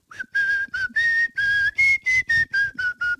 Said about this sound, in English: This morning, I'm in the kitchen, and I'm whistling, as I often do, because I have joy in my heart, and I'm just a person who whistles all the time. I'm just whistling away.